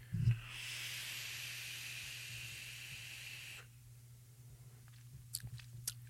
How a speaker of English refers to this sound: You can just slurp it out. Your first drag is going to clear that tube of all e-liquid inside of it.